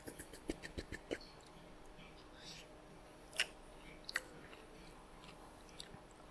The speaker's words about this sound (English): ASMR. With the crunch of the onion. Oh, that's good. That's good kimchi.